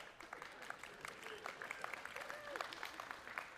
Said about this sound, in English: Thank you for clapping. Yep.